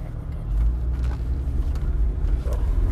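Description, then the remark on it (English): A car idles in traffic, its engine a steady low rumble that holds for the whole stretch, with faint road noise above it and no one speaking. “I'm just gonna wait, just cause I don't want to hit a car.”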